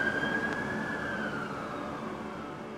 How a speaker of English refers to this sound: And just maybe 30, 40 seconds later, the cops just went whizzing by with their sirens on. I knew I had lost them.